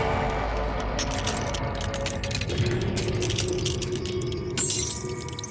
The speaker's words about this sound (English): Spencer, is that the sound effect from Stranger Things 4? The clong? The bell clong? Yes, I found it. I put this on.